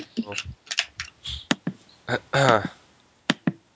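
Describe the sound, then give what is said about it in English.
Sharp clicks of a computer being used, picked up by the computer's microphone instead of the headset, several irregular taps spread across a few seconds, mixed with muffled, indistinct voice sounds between them. “Oh, it's me clicking because the damn thing is picking up my computer instead of the headset.”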